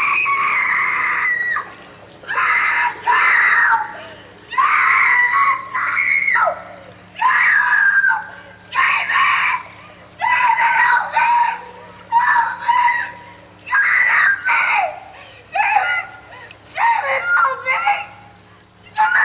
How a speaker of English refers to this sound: This is the first time we really get to hear her scream. She has a couple of little ones earlier on, but this is the...